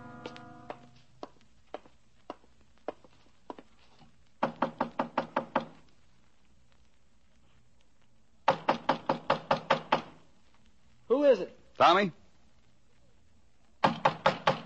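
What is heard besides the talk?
knocking on a door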